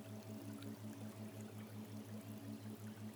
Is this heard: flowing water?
yes